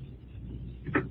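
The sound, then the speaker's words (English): A low, steady rumble gives way to a door closing and being locked: a muffled thud followed moments later by a sharp click. “Oh, I hear you close and lock the door.”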